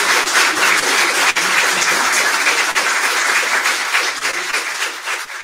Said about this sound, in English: Did the clapping come through normally, or was it like jumbled clapping? The clapping came through, like, but one arm frozen.